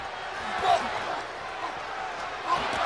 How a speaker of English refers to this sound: Oh, hear that one? The left cross in the jaw.